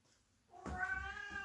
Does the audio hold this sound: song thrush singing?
no